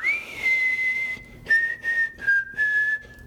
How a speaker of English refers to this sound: Okay, I can't whistle. Give me one more chance.